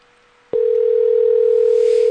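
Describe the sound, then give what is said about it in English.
An outgoing internet call's ringing tone begins after a brief near-silent pause, a single steady electronic tone holding loud and unbroken to the end, with no voices. “So I'm going to call her on the old skip.”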